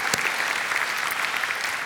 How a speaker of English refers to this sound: Thank you, Lord. And we give you all the glory. Give the Lord another round of applause.